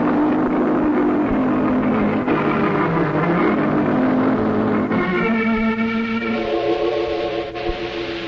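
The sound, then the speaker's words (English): A car engine roars loudly, its pitch climbing and shifting as it revs and the driver pulls away fast in a hurry, with no voices over it. “Golly, he's certainly in a hurry. With them brakes the way they are, he'll kill somebody if he ain't careful.”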